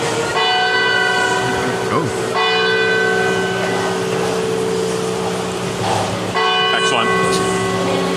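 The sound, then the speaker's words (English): Bells ring steadily for the whole stretch, their overlapping tones sustained and fairly loud, with a busy background hum and faint murmuring beneath. “The bells.”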